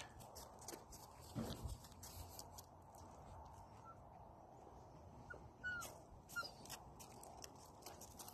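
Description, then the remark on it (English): A dog whimpers excitedly at the sight of another dog in short, high-pitched whines and yelps that come in scattered bursts, over a steady rush of outdoor background noise. “He gets so excited when he sees other dogs.”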